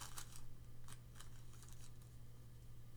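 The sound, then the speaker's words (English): Thin cigarette rolling paper, about 3 inches wide by 1 3/4 inches tall and folded in half with a crease, crinkles in several quick, soft crackles and rustles, scattered irregularly over a faint steady hum, with no one speaking. “You can hear me with the cigarette paper here.”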